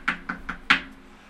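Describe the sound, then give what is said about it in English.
Four quick knocks in an even rhythm, the last one slightly harder, knuckles rapping on a door, followed by quiet room tone with no talking. “So I'm going to go up to the door, and I'm going to be like...”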